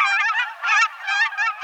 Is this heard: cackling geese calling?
yes